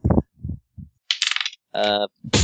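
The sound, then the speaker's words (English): Two dice roll across a hard tabletop for a coordination check in a role-playing game: a few soft thuds, then bright clattering rattles and a short ringing spin as they settle, clear with no talking. “Man, both those dice roll shit.”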